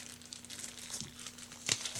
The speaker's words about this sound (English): So I'm opening this tiny package, and what have we got here? All right.